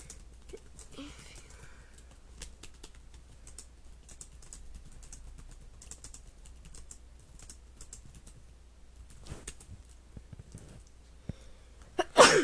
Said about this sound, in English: Okay, sneezed.